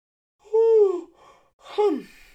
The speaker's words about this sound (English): Sorry, I yawned.